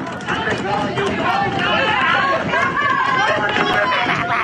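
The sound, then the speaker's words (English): A large crowd of masked students confronting Shapiro chants "Say it to her face" loudly and continuously, many voices blending into a dense, shouting roar, with clapping mixed into the steady din throughout. “Just a bunch of masked idiots shrieking. Say it to her face. Clapping, chanting, say it to her face.”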